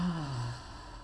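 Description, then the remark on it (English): A slow, deep exhale during a breathing exercise, with a soft voiced sighing tone that drifts downward in pitch, fairly quiet, then trails into breathy air; no speech. “Let's take a break and do a breathing.”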